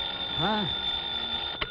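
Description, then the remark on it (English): A telephone rings with a steady, high-pitched tone throughout, joined briefly by a short vocal sound and ending with a faint click. “But as I reach for the phone again”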